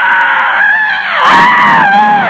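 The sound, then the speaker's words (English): A voice imitates panicked plane passengers screaming as the plane, unable to land, pulls straight up: one sustained loud, high wavering scream lasting a couple of seconds, pitch dipping and rising with a rougher, strained burst midway. “So he goes, he pulls it straight up. Everybody on the fucking plane goes, ah.”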